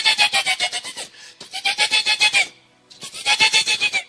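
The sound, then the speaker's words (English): A voice imitates a horse's neigh three times, each a loud, shaky, rapidly pulsing whinny about a second long, separated by short pauses. “It is called the neighing of the horse.”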